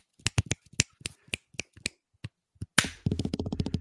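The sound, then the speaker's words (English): Sharp finger snaps ring out one after another, about a dozen crisp cracks at an uneven pace, then a faster burst of rapid snapping and clicking at the end. No one speaks. “I got a strong snap. Listen to that.”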